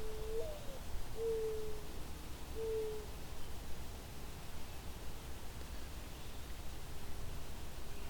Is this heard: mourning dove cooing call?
yes